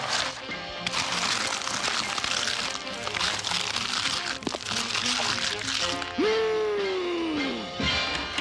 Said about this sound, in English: And I genuinely laughed when Ren starts, like, kind of slowly, aggravatingly starts chewing on cat litter to try and prove that he's Stimpy. Yeah. That's all crunchy and mealy, and they do a really good job with the sound effects.